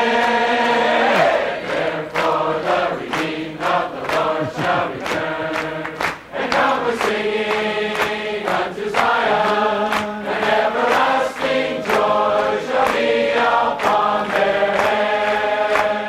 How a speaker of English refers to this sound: We thought you'd enjoy that chorus of Witness Lee with a crowd of about 1,600